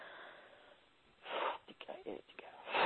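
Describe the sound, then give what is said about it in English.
A breathy, hissing inhale through the nose swells up, followed by a few shorter airy puffs and another strong intake at the end, fairly quiet, with no talking: deep, comfortable breaths drawn in through the nose and down into the belly. “You're breathing deep, comfortable breaths in through the nose and down into the belly.”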